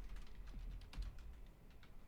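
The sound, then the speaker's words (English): Quick, irregular clicks of typing on a computer keyboard, fairly quiet, with a low rumble in the background and no voices. “Oh, no, the keyboard.”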